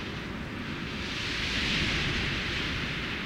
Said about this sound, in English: when I approached an organ-pipe cactus and was literally blown away by a wind song that I'd never heard before. Behold the intense hissing sound made by the gusting wind passing over and through the cactus's countless clusters of stiff, sharp spines.